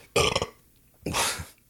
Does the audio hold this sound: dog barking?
no